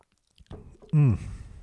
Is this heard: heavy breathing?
no